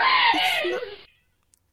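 A startled person lets out a single loud, shrill scream that breaks and trails downward, cutting off after about a second, followed by near silence with a faint click.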